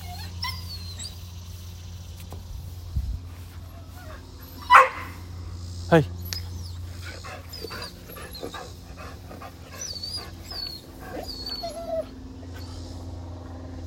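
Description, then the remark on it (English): A neighbor's dog, out again, barks a couple of sharp times and whimpers and whines intermittently while a person speaks briefly over a steady low hum. “Ugh, the neighbor's dog is out again.”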